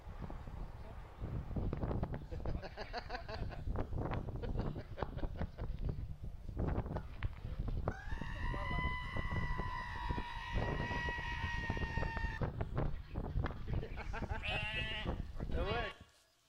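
Sheep bleat repeatedly, with one long, drawn-out bleat in the middle and shorter wavering cries near the end, all over a steady, loud background rumble.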